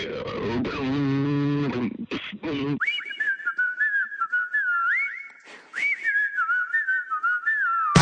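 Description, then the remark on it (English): After a brief voiced, hummed-sounding opening, someone whistles a clear, lilting tune, holding steady notes with small slides and quick breaks between phrases. “Whistling while I'm walking with my head to the sky.”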